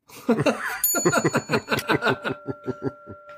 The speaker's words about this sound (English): So hit the bell. Do me, hit the bell.